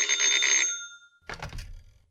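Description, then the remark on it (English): A telephone bell rings in a fast, rattling trill for under a second, fairly loud, then a handset is lifted with a brief clatter and low thump. “Let me answer the phone.”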